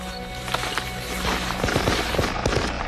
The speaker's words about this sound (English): I just heard gunshots.